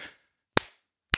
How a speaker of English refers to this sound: How about a clap?